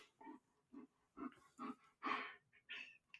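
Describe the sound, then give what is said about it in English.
A dog yawns, with several soft breathy huffs leading into a longer squeaky, whining exhale, followed by a few short sighing breaths. The sound is faint and no one speaks. “Dog yawns.”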